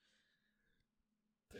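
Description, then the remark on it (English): A quiet, low burp drones for under a second, followed by a brief near-silence and then an abrupt, much louder breathy burst right at the end. “Oh, I'm so sorry. I keep burping.”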